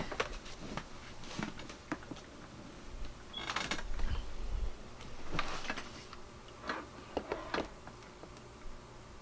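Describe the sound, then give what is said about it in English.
A microphone gets knocked over: a scatter of sharp clicks and taps, then a louder clattering bump with a dull low thud, followed by more irregular handling knocks. No one speaks. “Whoops. I just knocked my microphone over.”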